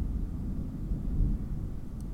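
distant thunder

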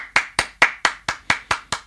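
one person clapping hands

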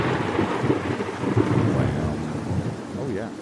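thunder sound effect

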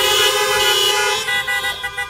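car horns honking

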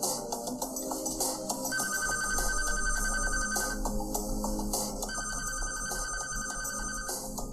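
telephone ringing

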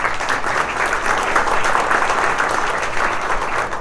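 audience applause

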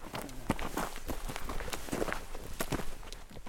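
footsteps

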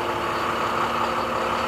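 bus engine idling

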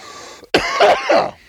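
cough

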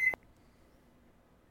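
oven timer beeping

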